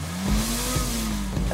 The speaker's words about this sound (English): The other agent in the car slammed on the gas and revved up the engine to drown out Eichmann's cry.